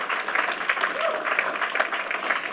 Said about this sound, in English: So can we give them an applause, please?